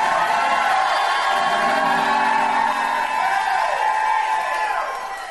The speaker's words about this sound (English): I'm going to stop till somebody shouts.